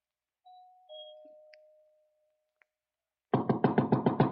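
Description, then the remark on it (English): A two-tone doorbell chime, pressed at the front door, sounds inside a big, dark house at night, each note ringing out and slowly fading into quiet, followed a few seconds later by a loud burst of rapid, rhythmic thumping. “I walked up the front stairs, punched at the doorbell, and heard it ring inside.”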